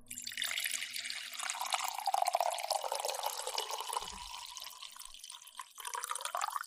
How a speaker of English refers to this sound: I sat here and listened to 6 takes of coffee pours. I watched you do it so we could redo this intro, and here we are.